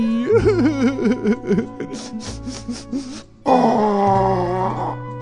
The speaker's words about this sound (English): Oh, sorry. I had to blow my nose.